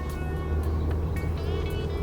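A taxi driving back with passengers, heard from inside as a steady engine rumble with continuous road noise and faint higher tones, no voices.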